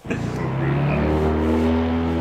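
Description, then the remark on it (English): A fan boat engine roars loudly and steadily as the boat takes off and leaves, its deep droning hum holding strong throughout with no voices over it. “There goes his fan boat again.”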